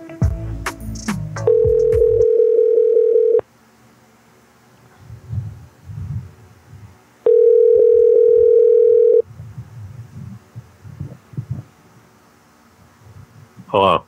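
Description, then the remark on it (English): A telephone ringback tone sounds twice while calling a 74-year-old father, each a steady mid-pitched buzz lasting about two seconds, separated by a few seconds of quiet with faint low murmuring underneath. “Call my 74-year-old dad.”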